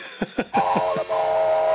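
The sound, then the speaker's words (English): A couple of rhythmic steam chuffs lead into a loud, sustained whistle from the steam train Casey Jr., holding steady, with the engine still chugging softly underneath. “Is he the front of the train, or is he the whistle?”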